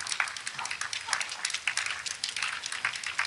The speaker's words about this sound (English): Okay, now you're hearing like four people clapping. Whoever did the advance for these guys was not great at stagecraft, because they have a long way to walk up to the podium. I'm counting the people applauding. It's three people.